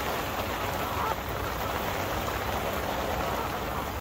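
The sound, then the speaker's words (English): Steady rain falls outside a fishing shelter in a dense, continuous hiss, pattering evenly on a surface with no break in intensity and no voices. “Well, the rainbow didn't last very long, but the rain is certainly.”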